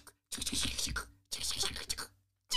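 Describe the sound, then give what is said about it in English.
A voice imitates typewriter keys clanking: breathy bursts of rapid clicking and clattering in two long runs with a short gap, then a third burst starting at the end. “No, it's like the clank, clank, clank.”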